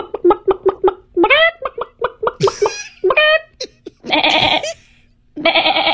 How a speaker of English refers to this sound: It's a barnyard. Oh my God, a horse. Gosh. A chicken. That's pretty good. Play that again. Damn. That was good. That's a chicken. Or a goat or a lamb. And a horse. Fabulous.